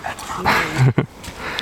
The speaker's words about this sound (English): there's a dog passing by. Two dogs.